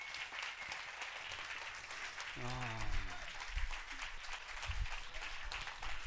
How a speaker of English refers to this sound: Come on up. Let's give them a round of applause and welcome them to Destiny.